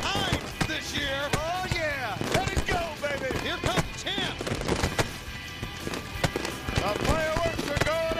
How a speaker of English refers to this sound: Hey, we got a little fireworks going here.